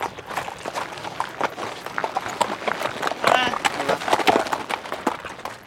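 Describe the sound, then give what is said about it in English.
Horses' hooves clop steadily in an uneven walking rhythm as riders pass on a beach in Southern California, with faint voices and outdoor background noise drifting in midway. “This is also the only place in Southern California where you can legally ride a horse on the beach.”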